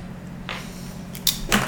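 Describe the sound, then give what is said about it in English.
Arrows thud into a target in quick succession, with a soft whoosh first and then two sharp impacts over a low background hum. No one speaks. “Arrow. Hitting 4. 3. Shunk.”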